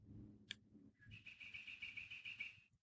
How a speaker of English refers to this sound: And as I'm recording this, I know you can hear the springtime birds. Just allow that sound to wash over you.